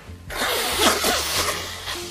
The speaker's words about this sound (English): They can listen to me blow my nose.